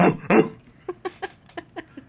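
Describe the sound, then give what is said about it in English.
A person imitates a dog barking: two breathy bursts, then a quick run of six short, yappy voiced barks at a steady rhythm, fairly quiet. “Arf, arf. Woof, woof.”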